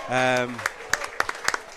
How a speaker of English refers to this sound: Charlie over there receiving his applause, as is Neil Reynolds coming off the pitch.